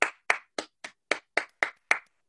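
Eight crisp, evenly spaced hand claps in a steady rhythm, roughly three or four per second, loud and sharp with no voices over them.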